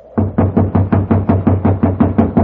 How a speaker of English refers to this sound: See if it's open. No, it's locked. You'll just have to keep knocking till he wakes up.